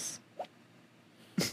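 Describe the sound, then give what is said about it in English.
A dog in deep sleep lets out two soft, brief yips, spaced about a second apart, like tiny muffled popping sounds, with no one talking. “Yeah, it's like little yips that he does when he's like in deep sleep.”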